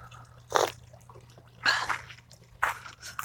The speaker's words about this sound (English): I'm actually having hot lemon water this morning. And I filled my mug a little over full. Splashing it on my hand.